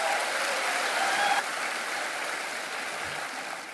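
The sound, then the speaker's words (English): Sustained crowd applause at Harvest welcoming Dr. James Dobson, a dense steady wash of many hands clapping at once, loud at first and easing slightly toward the end, with no voices over it. “So with that being said, let's give a warm Harvest welcome to Dr. James Dobson.”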